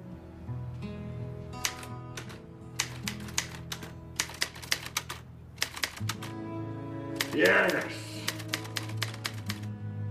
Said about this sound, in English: Sometimes a simple rhythm of typing gets us from page 1 to page 2. And when you begin to feel your own words, start typing them. Punch the keys, for God's sake!